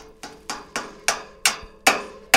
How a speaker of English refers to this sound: That's the sound of researchers trying to gently, or not so gently, put together a tower with antennas to help track birds. More specifically, track American golden plovers.